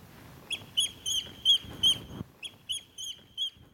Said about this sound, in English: And I think the oyster catchers deserve a bit of praise for sharing their own special poetry.